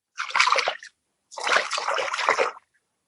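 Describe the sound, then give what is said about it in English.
Water splashing in two noisy bursts, a short one followed after a brief pause by a longer churning splash, with no voices present. “Freaking siren splashing.”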